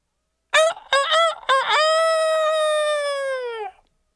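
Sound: rooster crowing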